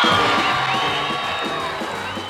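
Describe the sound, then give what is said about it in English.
A crowd cheers and applauds loudly and continuously to welcome a blues singer, with whoops and shouts rising over a dense wash of clapping that barely fades over two seconds. “Ladies and gentlemen, how about a nice warm round of applause to welcome the world's greatest blues singer, the king of the blues,”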